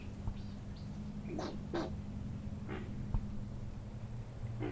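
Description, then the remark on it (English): A wetland chorus of frogs croaking in short, repeated bursts over a low, rumbling drone of alligators bellowing, with a thin steady insect whine above and no talking, on a swamp hike around a dome and solution holes in a Florida preserve. “But right now on our hike, frogs are croaking and gators are bellowing as we pause to listen to their sounds in and around the dome and solution holes.”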